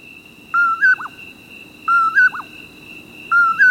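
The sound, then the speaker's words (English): A common poorwill sings its repeated two-part whistle three times at a steady pace, clear and fairly loud over a soft background hiss and a faint steady high tone. “The poor wills that stay through the cold come out of their torpor as the temperature rises.”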